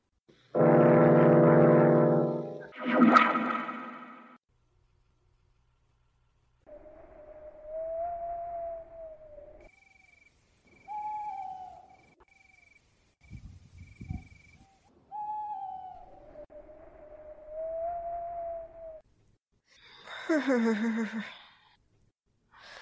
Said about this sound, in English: That wind. It sounds like a lost soul wailing.